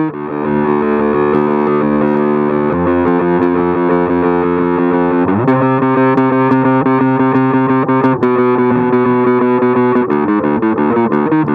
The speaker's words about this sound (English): Then when we get to the next part, that's where I use this filter thing. I go one click from the back and we get this sound.